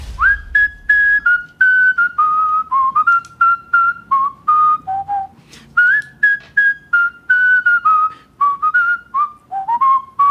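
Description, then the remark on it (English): A world champion whistler whistles a clear melody alone, pure sustained notes gliding between pitches in two flowing phrases separated by a short pause, with no talking. “The great …, the world champion whistler.”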